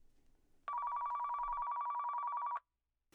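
A single loud telephone ring, a steady buzzing trill lasting about two seconds, preceded by faint low rumble and followed by silence: an incoming phone call during an on-air movie review.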